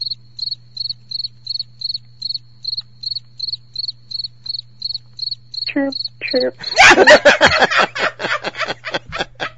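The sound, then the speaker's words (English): Crickets chirp, a reenactment for Larry Elder's welcome back party, in a steady, even rhythm of short high-pitched pulses for several seconds, alone over a low hum, before people talk and laugh loudly over the final stretch. “Chirp, chirp.”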